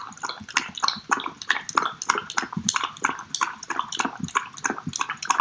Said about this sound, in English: Obviously, the best is dogs drinking yogurt. And just drinking.